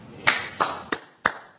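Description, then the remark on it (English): Four sharp, evenly spaced hand claps from a class in a slow, steady rhythm, each a crisp bright smack with a short decay, with no talking. “Applause for the crowd.”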